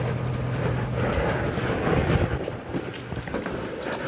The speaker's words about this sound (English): There are 10 of us on board a small ferry boat, 5 teenagers from different Boston public schools, and their educators from Zoo New England, Brandeis University, and the National Park Service.